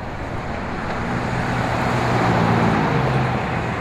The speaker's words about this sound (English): Oh my gosh, a car moved. Yay, I'm just one car away. One car left.